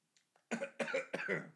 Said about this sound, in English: I am now hydrated, but now I must cough, so excuse me.